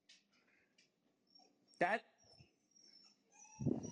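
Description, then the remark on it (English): A new 10-week-old puppy cries in its little cage: one sharp, rising yelp midway, with thin, high whimpers drifting before and after over a low, quiet background. “He's 6 weeks old, crying in his little cage right now.”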